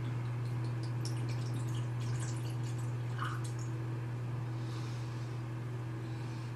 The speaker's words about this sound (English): That would be the year that this was put into oak barrels to age until I cracked this bottle and poured it into my glass. 15 years ago. This has not seen air until just now.